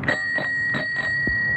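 A bicycle bell rings alone, struck about four times in quick, even succession, its bright high-pitched ring sustaining steadily between strikes, with a short thud near the end.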